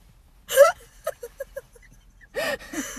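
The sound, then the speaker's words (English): A person gasps for breath: a sharp, loud intake, then a run of short, choppy breaths, and two more heavy gasps near the end. No words are spoken. “I'm sorry, I'm really short of breath.”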